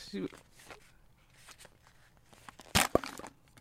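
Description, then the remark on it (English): Soft rustling and small crinkles lead up to one loud, sharp crunching burst as a can of original-flavour Pringles is opened and the chips are bitten, followed by a couple of quieter crunches. “Hey, I got some Pringles.”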